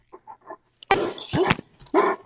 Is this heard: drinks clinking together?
no